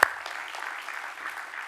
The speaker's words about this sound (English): Come on, not only give yourself a hand, but give God a clap of praise.